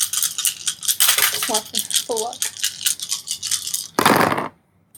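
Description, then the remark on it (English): A handful of eight dice rattles and clatters continuously, ending in a loud final tumble before sudden silence. A brief vocal sound rises faintly beneath the clatter. “So, you're rolling 8 dice at this point against yes.”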